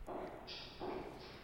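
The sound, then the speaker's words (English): Two sharp heel clicks land roughly three-quarters of a second apart, the hard-soled steps of a man walking to a piano, each with a bright, ringing edge, with a faint background hum. “this click of the heels. Walking to the piano.”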